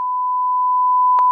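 A steady, loud censor bleep tone holds one pitch for over a second, briefly interrupted near the end by a short click, with no voices present.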